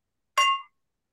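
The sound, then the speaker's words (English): Two wine glasses holding Roscato Sweet Red wine from Northern Italy clink together once in a toast, a bright ring that lingers briefly before fading into silence. “cheers to that.”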